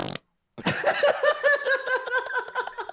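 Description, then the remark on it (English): A voice imitates a long, sputtering fart: a loud, buzzing, harmonic drone broken into rapid wobbling pulses, lasting a couple of seconds after a short pause, with no other talk. “Oh, also, dude, I had this fucking fart last night.”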